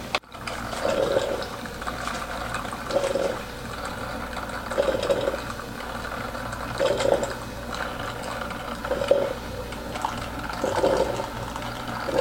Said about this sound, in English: Most coffee machines, you know, when you take away the cup, it doesn't, you know, it stops from pouring out. This one definitely is not the case.